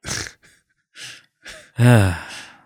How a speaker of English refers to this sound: My yawning, kind of sleep deprived, but not always sleep deprived, but kind of always sleep deprived co-host